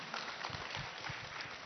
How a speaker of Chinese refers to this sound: 大家给神一个掌声。阿们。